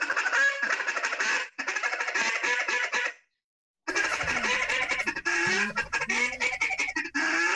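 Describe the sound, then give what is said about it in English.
A duck call runs a rapid, rolling feeding chatter in two loud bursts separated by a short silence, with a few drawn-out quacks mixed into the second run. “So by adding a duck, I mean adding a quack, because the duck almost never just feeds monotonously in a sound. So they're going to do a few licks of a feed and then quack a little.”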